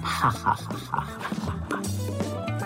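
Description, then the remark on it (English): A dog, Toffee, clears her throat as the dogs wake up, whimpering and making short, throaty huffing noises, several quick whines bunched together, followed by a steadier, droning background sound. “That's toffee clearing her throat.”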